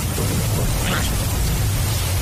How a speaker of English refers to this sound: There it is now. It's coming down. Cats and dogs. Come in out of it. It's only a shower, woman.